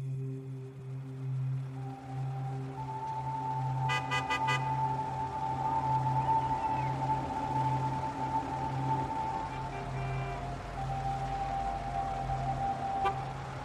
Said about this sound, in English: So don't put the pedal to the metal, we're not moving fast enough for that. Just be patient, because the traffic jam is 3 lanes deep.